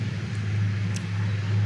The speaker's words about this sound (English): We just wait for the tractor to go past.